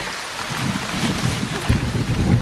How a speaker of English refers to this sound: I mean, it is muddy out and it's raining.